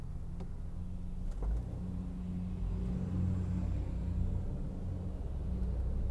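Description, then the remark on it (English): Trucks rumble along a city street heading into downtown Los Angeles, a steady low engine drone with passing traffic swelling and fading, fairly loud, with no voices. “Man, there's too many fucking trucks on this street.”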